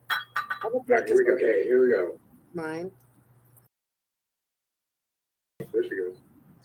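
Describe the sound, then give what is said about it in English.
A few light clinks of glass cups knocking together as tea is prepared with boiled water at a Blood Moon ceremony, mixed with brief murmured voices, followed by a stretch of silence and another short burst of quiet sound. “Just choose one and fill it in with boiling water?”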